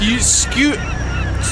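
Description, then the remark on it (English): A seagull named Sally Loon, marked with a black spot, calls with a few loud, harsh squawks in quick succession, each rising and falling in pitch, over a steady background of low noise. “That's the only seagull with identifiable markers.”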